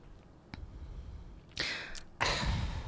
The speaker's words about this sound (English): Do you guys, is the air thinner suddenly? You're just gasping for air?